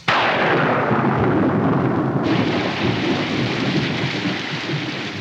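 A thunderstorm bursts in with a loud rumble of thunder, then heavy rain pours down in a dense, steady roar for several seconds, with no voices.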